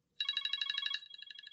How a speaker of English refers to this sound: I apologize. Your phone is alarmed too.